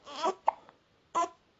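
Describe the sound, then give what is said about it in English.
A baby girl hiccups a few times, short voiced gulps with a sharp catch in between, spaced irregularly and fairly quiet, with no one talking. “See, she's got hiccups at the moment. Apparently, babies don't care about having hiccups, which I think is mad, because I find hiccups one of the most annoying things to have.”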